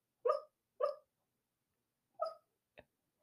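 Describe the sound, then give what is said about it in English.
A puppy dreaming in its sleep lets out three short, soft yips followed by a tiny clicking whimper, spaced irregularly with quiet gaps between, gentle and muffled. “She must have had a good day having all these puppy dreams.”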